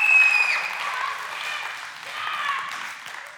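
An audience applauds, a dense, steady patter of many hands clapping for a few seconds, with scattered voices and a brief whoop mixed in, fading slightly toward the end.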